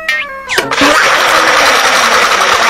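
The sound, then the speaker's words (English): A kitchen blender whirs to life after a brief tonal whine, then roars loudly and steadily with a dense, grinding motor noise that fills the rest of the moment. “And then they turn on a blender.”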